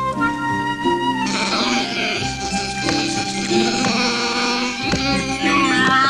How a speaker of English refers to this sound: And it's just Wookiee dialogue for 4 minutes straight. Just Wookiee growls for... it's so painful. We're not exaggerating. Listen to it.